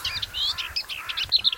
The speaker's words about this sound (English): That bird's come 6,000 miles to get a shot at breeding. Probably one shot.